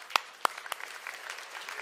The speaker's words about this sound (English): How many of you have walked in some level of maybe addiction or something that you had that you no longer have? If it's you, put your hand up, and then we're gonna clap for that.